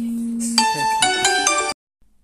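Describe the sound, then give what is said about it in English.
A mobile phone rings with a bright, melodic ringtone, loud, playing a short run of rising and shifting notes for under two seconds before cutting off abruptly into silence; an incoming call from the speaker's boss. “my phone went into a Hurricane Katrina-like of explosion from one of my boss' phone call that interrupted the podcast”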